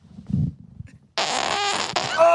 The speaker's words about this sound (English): Hey, can I do the first podcast fart?